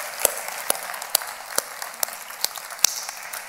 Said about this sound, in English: Can we just clap together and rejoice in the Lord?